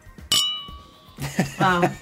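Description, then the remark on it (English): A single bright clink of glass bottles knocking together in a toast, ringing out clearly for under a second before people start talking. “Everybody, raise your glasses. It's still in the bottle, so bottle. Cheers.”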